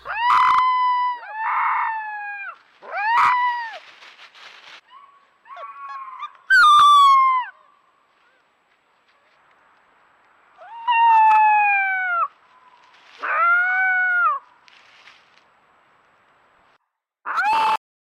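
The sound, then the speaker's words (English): A young wolf pup tries out its first howls: a string of about seven short, high, wavering cries with brief pauses between them, fairly loud, with no talking. “I think I want to have one little, makes me feel good, one little clip about this little wolf's first howl, and I think this is actually pretty cool.”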